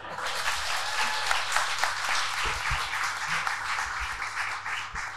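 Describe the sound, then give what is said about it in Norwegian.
An audience at a panel event on corruption investigation applauds steadily for about five seconds to welcome a guest, a dense, even wash of many hands clapping at a moderate loudness, with no voices over it. “Stor applaus!”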